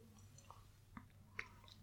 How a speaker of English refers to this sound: All right, I'm going to throw back the last of this gin. I'll throw back the rest of my drink.